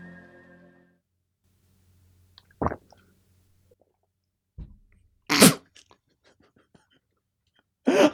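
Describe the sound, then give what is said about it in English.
Several wet, throaty gulps of swallowed liquid, short bursts separated by quiet gaps, the loudest in the middle and another at the end, after a brief voiced hum at the start. “I could really hear that swallowed liquid.”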